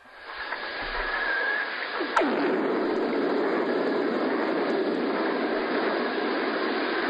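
A lightning strike heard underwater: a sudden sharp crack whose pitch sweeps rapidly downward like a zap, over a loud, steady rushing roar that builds up beforehand and continues afterward.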